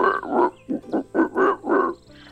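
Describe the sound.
A person imitates a frog or toad on a log with a string of about six throaty, rhythmic croaks in quick succession, fairly loud, with no other talking.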